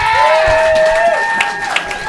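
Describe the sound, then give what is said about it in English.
A comedy-show crowd bursts into applause and cheering as the next comedian is called to the stage, with dense clapping and a few whistles and shouts rising over it, loud and steady from start to finish. “Give a huge round of applause for the very hilarious Tim Ledwith!”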